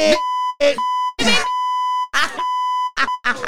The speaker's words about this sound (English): Where the beep at? Beep. Beep him.